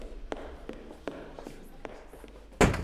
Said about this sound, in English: The one that just walked out of this door. I didn't see anyone, I was doing the machine. I did hear someone walking quite quick though.